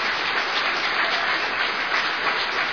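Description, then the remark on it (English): A church audience bursts into sustained applause to praise God for people coming to Jesus, a dense, even wash of many hands clapping at a steady loud level throughout, with no voices standing out. “Can we clap like we would at something that just praise God for that?”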